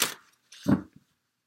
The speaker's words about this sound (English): And then from the past life Oracle cards deck. Sorry, all my crystals keep making noise when I shuffle.